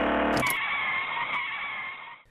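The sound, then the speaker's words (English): A car skids to a stop on a main road with a loud, sustained tire screech lasting about two seconds, preceded by a brief rumble, then cutting off abruptly. No one speaks. “It looks like a main road. Should be able to flag down a car.”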